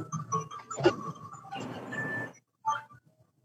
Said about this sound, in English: And then, my alarm's going off.